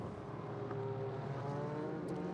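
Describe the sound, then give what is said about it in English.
A group of race cars, including a Corvette, drones past together on a race track's middle straight between turns three and five in sunshine, a steady, continuous roar with a few rising and falling tones, with no voices. “Gaggle of cars going through there at the moment, led by Alexis. And then it's the Corvette sitting in behind.”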